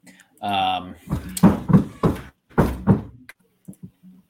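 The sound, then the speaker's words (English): A short vocal sound is followed by a rapid series of loud knocks on a door, coming in two quick bursts with a brief pause between them, then a few faint taps. “Who's knocking on the door?”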